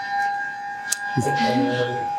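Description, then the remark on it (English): A noon lunch alarm siren holds a steady, loud, high-pitched wail for the whole stretch, with a voice starting to talk beneath it partway through. “That alarm lets everyone know it's time to go to lunch.”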